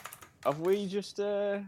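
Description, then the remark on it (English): A few quick keyboard taps clatter at the start as someone Googles the Bristol stool chart, then give way to drawn-out wordless vocal tones that fill the rest of the moment. “I'm gonna take this fucking microphone over to the keyboard for a little bit of the old ASMR with old franchise.”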